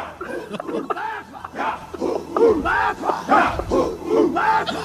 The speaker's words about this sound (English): Don't be talking over my war call, dog.